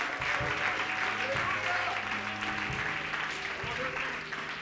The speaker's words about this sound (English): Let's give him a good hand clap.